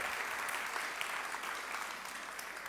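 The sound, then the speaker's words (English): An audience breaks into a steady round of applause, many hands clapping in a dense, continuous patter that holds at an even loudness throughout, with no voices standing out. “Give those guys who serve faithfully every Sunday a big round of applause, too.”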